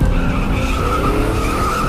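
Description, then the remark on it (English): Tires skid and squeal continuously under a loud, roaring car engine during a car chase after the Penguin through the streets of Gotham, a sustained burst of screeching that stays intense throughout like a high-speed chase. “Then I chased him through the streets of Gotham in my car.”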